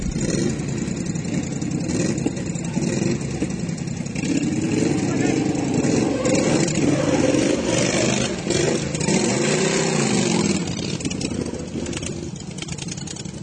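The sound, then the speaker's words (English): Racing lawn mower engines at a lawn mower racing event in the Waikato roar steadily for the whole stretch, their droning pitch sweeping up and down as they rev and ease off, loud and continuous, with a faint hum of voices underneath. “There's Bay Waikato Lawnmower Racing Club or Manamana Mower Racing Club if you're up in the Waikato.”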